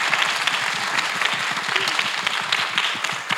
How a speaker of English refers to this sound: Thank you so much for joining us. Can we give a massive round of applause? Thank you. Thank you both. Thank you.